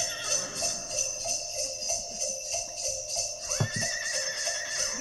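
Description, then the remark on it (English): A horse whinnies loudly amid a dense, rhythmic wash of high-pitched noise, with a rising tonal squeal near the end and faint hoof-like thumps underneath. “Oh my God, someone's hurting that horse.”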